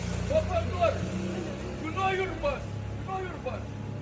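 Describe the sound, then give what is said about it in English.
A man's raised, agitated voice shouts in bursts at the driver of a packed bus he could not board, over the low, steady rumble of the idling bus engine, with traffic noise in the background. “He stood in front of it, shouting at the driver, desperate to get to work.”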